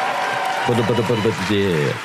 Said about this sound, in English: They cheer.